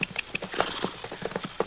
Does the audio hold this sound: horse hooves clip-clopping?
yes